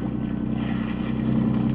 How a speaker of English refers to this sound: You swing the boat around.